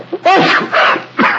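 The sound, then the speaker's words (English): A loud sneeze fit after taking snuff: a drawn-in, voiced wind-up followed by three harsh bursts in quick succession, with no talking. “Bless you, my dear fellow.”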